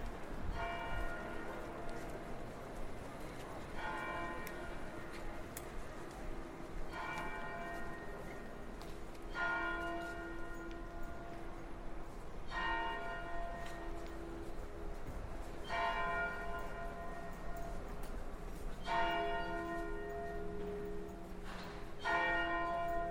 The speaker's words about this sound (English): On our left, we can see a red brick church and you can hear the bells.